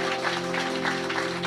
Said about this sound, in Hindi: सर्वप्रथम हम अपने सृष्टिकर्ता सृजनहार उद्धारकर्ता प्रभु यीशु मसीह का धन्यवाद करते हैं और हम तालियों से स्वागत करेंगे।